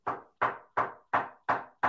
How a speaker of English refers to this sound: I'm knocking on wood. Yeah. I see your camera shaking like crazy.